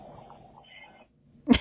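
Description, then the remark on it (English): A low, murky hum fades into near silence, then a single short, loud car horn honk in Philadelphia bursts in at the very end of a phone call and cuts off abruptly. “I love that Philly honk at the end. It wouldn't be a Philly phone call without a honk at the That's end.”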